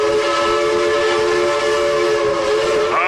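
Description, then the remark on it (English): A loud, sustained train whistle sound effect blares steadily with several harmonic tones, holding for about three seconds before bending slightly at the end. No voices are heard. “Hey, Valentina Shevchenko, apparently, I am hardcore on that hype train.”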